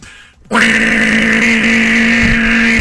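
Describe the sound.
After a brief quiet moment, a voice launches into a loud, steady droning buzz imitating a lawnmower engine, holding one low rumbling pitch without pause until the end.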